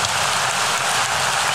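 Steady, dense clapping from several hands, a standing ovation for a song, blends into a continuous hiss of applause, holding an even, fairly loud level throughout with no voices.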